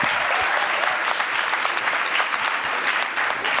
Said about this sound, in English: Hey, thank you very much for coming. What a great panel. Please give me a round of applause for them.